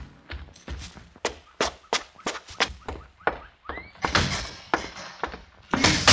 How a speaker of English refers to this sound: Slam the door